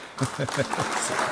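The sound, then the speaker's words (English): A short burst of clapping from a small group, a few quick overlapping claps that rise and then thin out, moderately loud. “Clap for that.”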